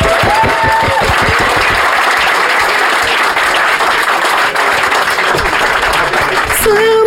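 An audience bursts into sustained applause, a dense steady wash of clapping holding at an even loudness for several seconds, with faint voices and a brief tonal sound mixed in at the start.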